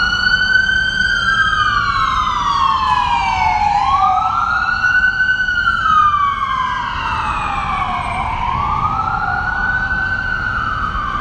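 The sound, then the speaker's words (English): A car passes by outdoors with a loud, steady road rumble, while a siren wails up and down in repeated slow sweeps throughout. No one speaks. “And yeah, we're recording outside, so we're going to wait for the car to pass.”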